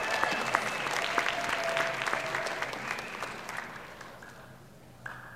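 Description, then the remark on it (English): An audience at South Bay Church claps for the children one morning, in steady, dense, crackling applause that gradually thins and fades over about five seconds, with a brief murmur of voices underneath. “Let's give the kids a round of applause.”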